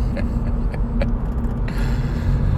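A steady low road rumble fills the cabin of a car driving in Texas, the muffled drone of traffic around it, including a Ford F-350 dually pickup truck ahead and an Audi behind, punctuated by a few faint clicks and ticks; no one speaks.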